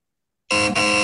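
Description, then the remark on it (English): A loud, harsh game-show buzzer blares after half a second of silence, holding a steady, raspy tone with a brief dip before continuing to the end, signaling a wrong answer to the third true-or-false question of a quiz. “43% of players got buzzed out on the third question on this quiz.”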